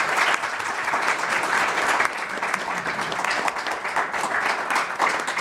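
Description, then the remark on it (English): An audience applauds the panelists, a dense, steady wash of many hands clapping at once that stays loud and even for several seconds without any voices breaking through. “Well, before we head to Q&A, just to give you a moment, because I know there'll be lots of questions, how about just a huge round of applause first for our panelists?”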